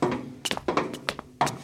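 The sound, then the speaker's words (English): Bender knocks on his mother's door at the assisted computing facility: several dull knocks come in loose, irregular clusters, each a short thudding hit, with a final louder pair at the end. No one speaks. “How's she gonna hear you knocking?”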